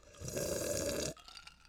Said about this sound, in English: I don't know why I sipped my whiskey so loud. Nobody does that.